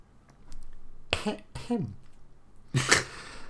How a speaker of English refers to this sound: I'm sorry, I was coughing. Oh, there's a little rabbit's cough.